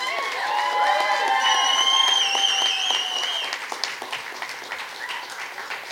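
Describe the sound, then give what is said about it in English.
At a comedy show, a crowd claps and cheers loudly as a comedian is introduced, with high whoops and shouts riding over dense applause that thins out into scattered claps toward the end. “Make some noise for”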